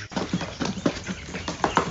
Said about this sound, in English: And, here's the chickens early in the morning. They're getting up.